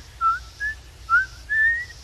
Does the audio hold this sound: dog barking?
no